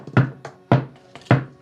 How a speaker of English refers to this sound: And as you sit with your many pelts and rugs and accolades, your weapons, your armor, your distant past, and your smoldering rage, a knock is heard at the door.